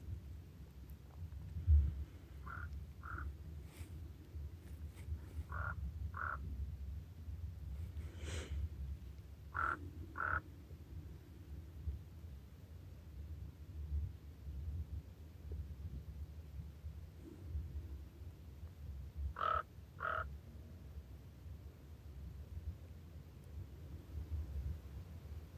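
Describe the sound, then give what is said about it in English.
A raven, coming out after a storm, calls in short paired croaks, repeated about four times at irregular intervals, over a steady low rumble of outdoor ambience. “Raven, coming out after the storm.”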